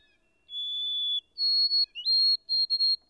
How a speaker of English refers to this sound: I at last discovered that it was the white-throated sparrow, a common bird all through this region. Its song is very delicate and plaintive, a thin, wavering, tremulous whistle.